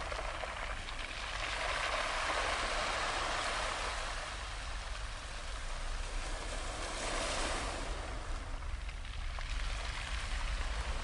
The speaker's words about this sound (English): And as we listen to the sound of the waves gently lapping on the shore, let us remember and give thanks for his constant and unending love breaking over us.